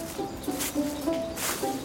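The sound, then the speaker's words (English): A newly arrived blackcap sings a quick run of short, very fluty notes in dense bramble and cherry scrub, while wind or rustling noise swells and fades over it outdoors. “Well, did you hear the black cap then?”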